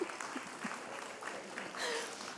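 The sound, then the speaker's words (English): An audience claps steadily for a couple of seconds, a dense patter of many hands, with scattered voices faintly mixed into the applause. “Yeah, you could clap.”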